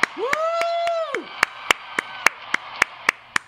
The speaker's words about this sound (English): Please join me in a round of applause for 70 years of service.